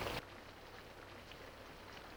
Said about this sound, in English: The soundtrack for this scene, and for much of the episode, is the sound of the rain.